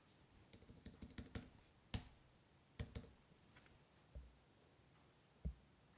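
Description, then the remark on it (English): Keys clacking on a computer keyboard as someone writes, a quick burst of typing followed by slower, scattered keystrokes. Fairly quiet, with no voices. “So you hear my clicking, I hear your clicking.”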